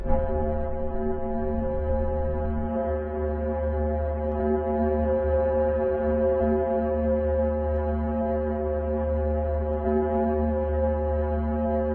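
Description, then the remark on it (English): A simulated sound of Venus: a deep, steady drone with a rich stack of buzzing harmonics, holding loud and unbroken for the whole stretch with a faint wavering texture and no voices. “While Mercury sounds like a rocket blasting off, Venus sounds more like Satan's version of the Gong Show. Just take a listen.”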